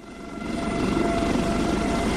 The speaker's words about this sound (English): Adamas Tower, Air Corps Rescue Helicopter Alpha 195 requesting liftoff. Alpha 195, you're clear to lift.